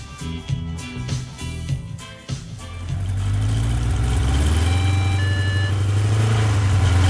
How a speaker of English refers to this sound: What the hell are you doing? You can't just ride a motorbike into the shop.